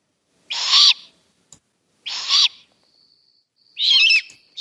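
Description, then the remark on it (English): Three harsh, hissing barn owl screeches, each roughly half a second long, rasping and high-pitched, separated by short silences with a faint thin whistle between the second and third. “Listen to the first part where it says Bard Owl. Listen to the screech one.”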